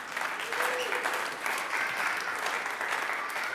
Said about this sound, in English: That is the easiest round of applause you will ever receive in your life.